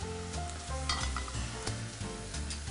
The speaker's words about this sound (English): And then over here in this pan, I'm gonna start by frying our bread.